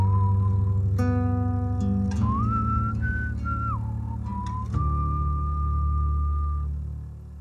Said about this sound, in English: Just love the whistling at the end of that.